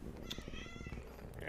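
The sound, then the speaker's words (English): A household cat named Drea lets out a single drawn-out meow, moderately loud, its pitch gliding downward before fading, over a steady low background rumble. “Sorry, our cat's in the way.”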